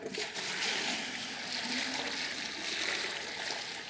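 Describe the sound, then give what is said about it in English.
Water pours into buckets in a steady, continuous stream for a few seconds, an even splashing rush with no pauses and no one talking over it. “Well, first, we're going to pour our life back into these buckets.”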